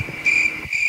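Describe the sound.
A person imitates a cricket with a steady, shrill, high-pitched trill held for under a second, fairly loud, with no talking.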